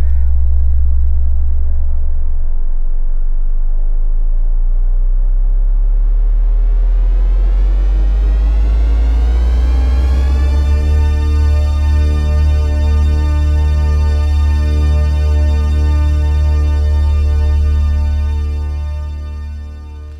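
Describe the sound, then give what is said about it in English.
A loud, deep droning hum, almost a vibration you could feel, heard on the road just past Belcher in Kentucky; it rises in pitch as if powering up, then holds steady with a heavy vibrating rumble for about twenty seconds before fading slightly at the end. “But just past Belcher, but before you hit Greasy Creek, I heard a loud hum. Almost a vibration you could feel in your balls, in your soul.”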